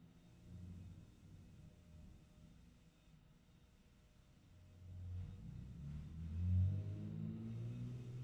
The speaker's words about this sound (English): Car engine.